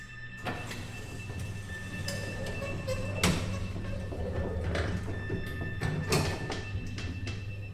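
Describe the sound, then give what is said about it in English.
Sliding elevator doors thud shut after the button for floor 9 is pressed, followed by a steady low mechanical hum and rumble of the lift in motion carrying three people, with a few faint clunks along the way; no one speaks. “As the elevator moved,”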